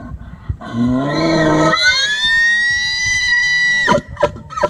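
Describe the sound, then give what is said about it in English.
An elk bugle call: a low, guttural groan that rises into a long, high, whistling scream held for a couple of seconds before cutting off, followed by a few short grunts. “You got that low guttural, and then you go into the scream.”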